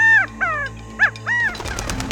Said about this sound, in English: Suddenly, a partridge flew right up to Icarus's face, chirping up a frenzy.